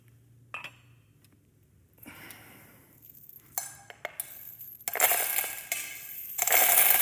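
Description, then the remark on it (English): Coins clink and jangle as they are slammed into a box, starting with scattered metallic taps and building into a loud, dense clattering rush near the end, with no talking. “So they would have these boxes, and they would just slam their coins into the boxes so that everybody would know what they were doing.”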